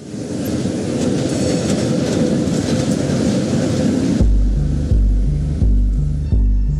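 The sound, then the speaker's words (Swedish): A train rumbles past with dense, roaring noise, then the rhythmic clickety-clack of wheels over rail joints comes through in a steady repeating beat. No talking. “Alltså det var ju verkligen ett tåg också.”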